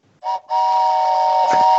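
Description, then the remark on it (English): A prop train whistle, not a real train, blows loud, first a short toot, then a long steady chord-like wail that holds to the end, with no voices over it. “Was that are you riding a train right now? No. Oh. It's my prop left over from the last episode.”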